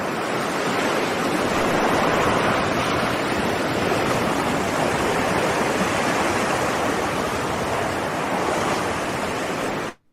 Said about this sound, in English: It's a wave. It's an ocean wave. I knew what it was.